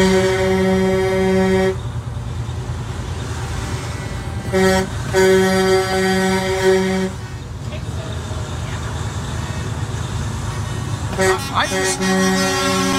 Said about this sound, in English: I'm just in awe of this big, long line of trucks. And there's a huge line up behind us.